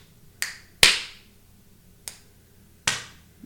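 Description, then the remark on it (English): Four sharp snap-like percussive hits, the "slap snap" beat used in recent number-one pop and country hits, with quick decays, spaced irregularly across a few seconds, the second one loudest and brightest, over a faint low background and no voices. “And I watched a video on YouTube where this guy called it the slap snap.”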